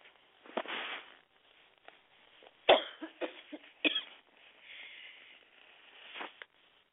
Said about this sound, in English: Sorry about that. I didn't mean to cough in your ear.